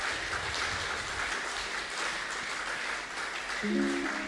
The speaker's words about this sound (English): Shall we give Jesus a wonderful round of applause? Let us also give our daddy a wonderful round of applause for he has used him wonderfully for us this morning. And also celebrate Jesus in your life with a wonderful round of applause.